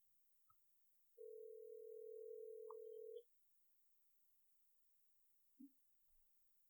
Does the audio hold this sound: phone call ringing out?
yes